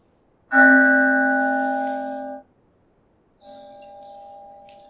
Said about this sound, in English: We started with the bell, and we end with the bell. The mindfulness bell, taking us into the breath, taking us into the sacred moment that is always waiting for our attention.